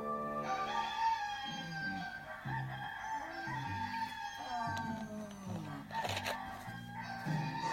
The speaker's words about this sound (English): Cockerel, should have done the old dogs barking, sirens, baby crying, drills.